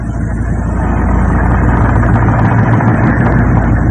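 A ship's engine is started and runs with a loud, steady, deep rumble and a dense mechanical drone at a frequency of 20 hertz, holding an even level throughout with no pauses or voices.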